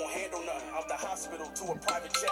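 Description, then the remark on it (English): A phone ringtone plays steadily for a couple of seconds for an incoming VoIP call, a bright, melodic electronic tune with a sustained high tone running underneath, fairly loud. “How your phone ring and my shit ring?”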